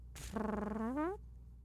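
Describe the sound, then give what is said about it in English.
A single buzzy fart noise blown with the lips, lasting about a second, wobbling slightly and rising in pitch before cutting off abruptly. No one speaks. “Go ahead. Make a fart noise.”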